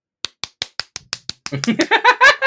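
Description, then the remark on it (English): A hand slaps a nicotine patch on skin six times in a quick, steady rhythm, each smack crisp, before voices break in and carry the rest of the moment. “Just keep slapping it like a fucking...”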